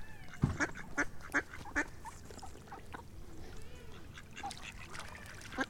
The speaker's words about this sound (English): We'll finish feeding the ducks and then we'll get off.